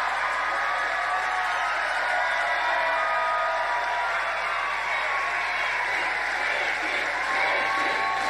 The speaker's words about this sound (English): No, the crowd simply cheers.